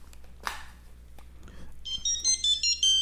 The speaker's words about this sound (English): That's my Tony Soprano ringtone.